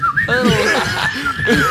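A thin, wavering whistle drifts up and down in pitch for under two seconds, nearly buried beneath bubbling laughter and snickering.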